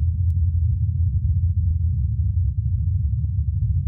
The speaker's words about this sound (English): the sound is greatly muffled by the thin Martian atmosphere. It is further obscured by Martian wind gusts during the initial moments of the flight. Listen closely, though, and the helicopter's hum can be heard faintly above the sound of those winds.